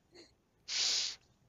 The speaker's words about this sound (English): I don't have a particularly good nose, but I just sniff.